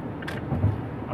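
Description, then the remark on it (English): A Toyota car drives by with a steady low engine rumble and road noise that swells slightly midway through, heard alone at moderate volume for just over a second. “Oh, geez, is that where Golf finally goes? Oh, no, that's the Toyota.”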